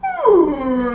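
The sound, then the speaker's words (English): A person makes a loud, drawn-out moaning call in imitation of a whale, as if talking to whales while leaning over the side, the pitch sliding downward and then holding low and steady for about a second. “It's really easy to talk to whales. I'm going to lean over the side and go...”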